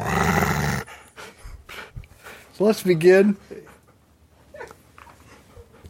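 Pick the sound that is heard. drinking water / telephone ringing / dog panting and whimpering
dog panting and whimpering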